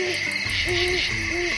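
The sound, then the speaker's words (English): An owl hoots in a short series of low, hollow, rising-and-falling calls, repeated about three times, over a steady background hiss with no one speaking. “An owl's wings are designed for stealth flying, but just how the design works is still a bit of a mystery.”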